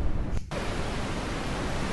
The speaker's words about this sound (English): Pink noise is smoother than the white noise, and it's really about a ratio of the level to the frequency.